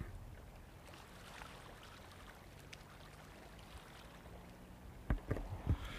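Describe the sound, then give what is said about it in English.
Steady, soft wash of water outdoors at a beach shoreline, a low continuous murmur with a few sharper splashes or laps breaking through near the end. “I mean, I don't know if you can hear the water from here.”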